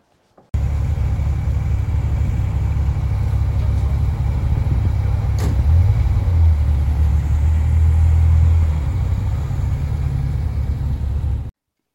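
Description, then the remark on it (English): A loud sports car engine outside a window rumbles steadily for about ten seconds, deep and throaty, with a brief rise in pitch midway as it revs, then holds before cutting off. No one speaks. “sports car drivers outside the window making a loud noise while I'm trying to record in here, let's have a look outside.”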